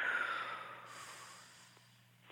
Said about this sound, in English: First of all, take a deep breath in and then let it exhale. Let the breath exhale.